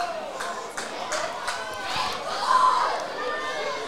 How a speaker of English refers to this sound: The crowd's come to life in the last couple of minutes. The majority of the Gunners supporters off to our right. Trying to lift the roof off Linwood Park Stadium this afternoon.